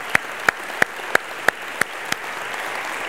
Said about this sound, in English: We'll just put our hands together and give some special honor, love. Woo!